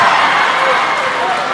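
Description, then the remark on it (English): A loud, steady roar of a large crowd cheering and shouting at a girls' basketball game, a dense wash of noise that holds constant throughout the short moment. “With a crowd this loud, that's a good coaching decision by Westlake.”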